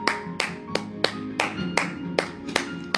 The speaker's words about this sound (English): Applause? Okay.